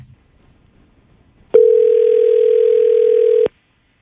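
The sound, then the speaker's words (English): A loud, steady telephone dial tone hums continuously for about two seconds after a quiet pause, then cuts off abruptly, as hosts of the radio station Mix 94.7 place a phone call. No one speaks. “We're going to call him right now and see what he has to say, okay?”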